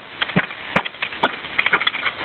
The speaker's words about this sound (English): He just fucking broke the window.